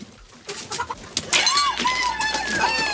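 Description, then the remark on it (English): A live chicken, presented as fresh chicken for dinner, clucks and squawks in a run of short, sharp calls with a couple of longer warbling cries, loud and unsteady over a faint background. “Now that's fresh chicken!”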